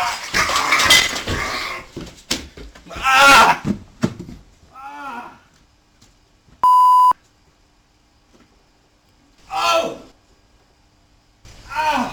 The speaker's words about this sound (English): I should add, by the way, that the beep in the middle of that's not really the clip. That's some profanity being bleeped out to make it broadcastable. It's not like a robot in the middle.